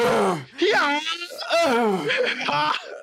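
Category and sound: vocal imitation, imitated heavy breathing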